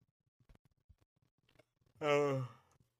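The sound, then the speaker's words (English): After a stretch of faint clicks and small mouth noises, a single loud, drawn-out yawn rises with a voiced, breathy tone and trails off after about half a second. “Excuse me. There's a yawn.”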